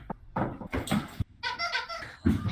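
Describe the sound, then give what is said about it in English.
A squeaky dog toy is squeezed repeatedly: a few short, breathy squeaks followed by a longer, wavering high-pitched squeal, then a final squeeze, fairly loud with no one talking. “Is there a clown outside? Doggy toy.”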